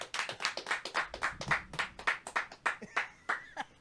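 A small group claps for a few seconds, the sharp, uneven claps overlapping in a quick irregular patter, with a voice briefly calling out near the end.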